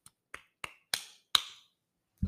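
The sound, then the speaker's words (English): A lone person claps five times at a slightly uneven pace, each sharp, bright clap louder than the one before, followed by a brief silence and a soft low thump. “I just clapped for myself because I have no audience.”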